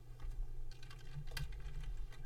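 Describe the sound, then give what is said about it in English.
Quick, irregular clacking of fingers typing notes on a computer keyboard to post to a chat room, a steady stream of keystrokes over a low electrical hum, with no voices. “All right, I was going to post these notes to the chat room. That's what I've been clicking away on, but it's too lengthy.”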